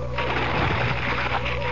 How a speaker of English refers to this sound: Crumpled sheet after sheet of paper.